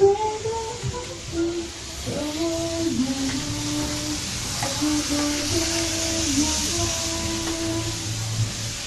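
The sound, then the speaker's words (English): Food sizzles in a hot wok, a steady, bright hiss running throughout, with Chinese karaoke singing playing underneath at moderate volume and a little honk at the end. “And the sound of a wok frying food.”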